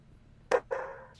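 A pet dog barks twice, a short sharp yelp followed by a longer, drawn-out bark, with the start of another cut off at the end. It is fairly quiet, with no talking.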